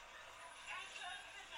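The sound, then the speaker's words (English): Inside a bus, a steady airy hiss like an air brake releasing fills the space, with a faint engine drone beneath and a brief swell partway through. “I don't think the bus is moving.”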